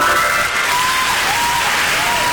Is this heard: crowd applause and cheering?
yes